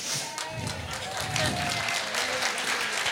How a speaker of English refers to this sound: For those of you who applauded, thank you very much. For those of you who didn't, thank you for holding your applause to the very end.